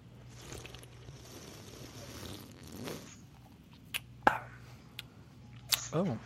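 Someone sips from a freshly opened purple can of cola soda: a few seconds of soft, breathy slurping, then a few short, wet gulps and clicks, moderately loud against a quiet background.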